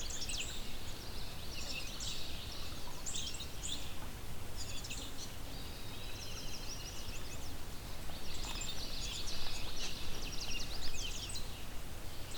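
A songbird mimicking a house wren pours out rapid, bubbling, high-pitched warbles and chatters in nearly continuous phrases over a steady low background rumble, with no one talking.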